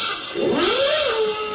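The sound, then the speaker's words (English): An alarm tone sweeps upward in pitch, then holds a steady electronic whine, sounding over a constant layer of bright, hissy noise with no one talking. “Put the alarm on.”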